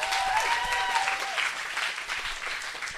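An audience claps steadily in a dense, continuous wash of applause as a speaker is introduced at the start of a week-long event, with a faint whistle-like tone near the start and no clear speech over it.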